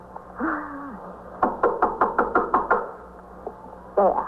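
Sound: knocking on a door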